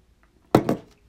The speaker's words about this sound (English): Yeah, I'm about to take a sip.